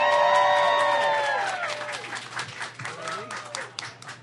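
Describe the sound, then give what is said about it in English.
A crowd applauds and cheers loudly for the next two participants called up, with high whoops and shouts ringing over dense clapping that gradually thins into scattered claps. “Round of applause for Colin and Christie.”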